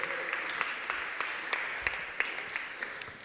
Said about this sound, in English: Brilliant. Round of applause.